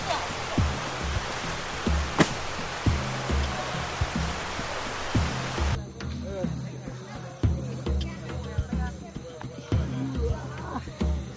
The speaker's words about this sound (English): Inside the Darien Gap. This is day number two. We're just filtering out some water here.